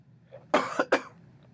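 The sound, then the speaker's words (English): A short burst of coughing: one harsh cough followed quickly by a second, fairly loud, with a faint low hum in the background and no talking. “I don't have a cough button because, you know, we don't have a budget.”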